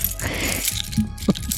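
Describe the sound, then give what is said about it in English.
A bunch of keys jangles in short metallic bursts, clinking a few times as they're shuffled and handled while someone searches for the right key, with no voices. “All right, I'm going to try to use all my keys that he's given me.”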